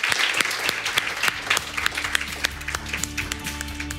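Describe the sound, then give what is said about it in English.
An audience applauds steadily to thank an evening panel, many hands clapping in a dense, bright patter of overlapping claps. A low tonal hum runs beneath the clapping, which continues at an even level throughout. “Please join me in thanking our amazing panel for tonight.”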